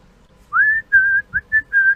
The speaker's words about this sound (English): I'll walk through Walmart and I'll whistle that song and he'll be like, dude.